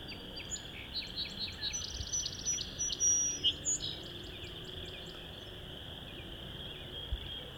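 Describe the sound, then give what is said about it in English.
A song sparrow sings softly right in front of the recordist, about half an hour before sunset under an overcast sky: a short run of bright, quick trilled notes that fades after a few seconds, over a steady high insect drone and faint outdoor hiss. “This song sparrow's right in front of me, but singing quietish.”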